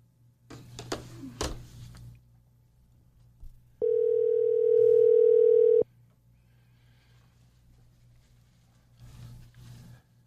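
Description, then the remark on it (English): A loud, steady telephone dial tone drones for about two seconds, framed by brief bursts of handling noise and a low background hum, with no one speaking. “You gotta introduce the phone call.”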